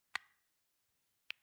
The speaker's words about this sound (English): You can just do that shit on command. That shit hurt me. Really? Yeah. Like, I don't ever crack my knuckles like that. That shit fucking, I feel like I'm about to break my fucking hand.